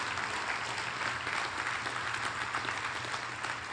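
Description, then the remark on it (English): Sustained applause from an audience after a sung performance, a dense, steady wash of clapping that holds at an even level from start to finish with no voices standing out. “Give her a hand.”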